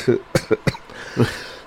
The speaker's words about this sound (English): he will start coughing again and again and again.